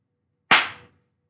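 hand clap

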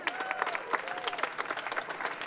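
audience clapping and applauding

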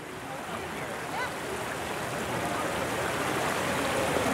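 water

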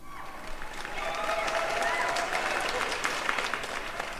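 crowd applause

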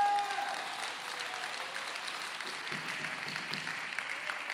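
audience clapping

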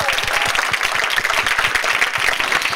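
audience applause

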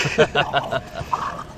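dogs barking and fighting

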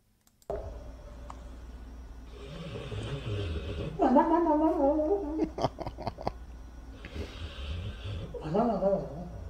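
dog snoring

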